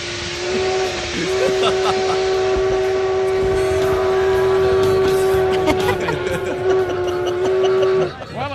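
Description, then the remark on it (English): A train whistle blows one long, steady, loud note for about eight seconds over hissing and rumbling rail noise, then cuts off abruptly. “There's a train song.”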